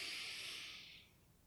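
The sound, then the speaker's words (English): A single long, airy inhale through the nose during a breathing exercise, soft, a steady hiss that fades out after about a second, followed by quiet as the breath is held. “Breathing in and holding it.”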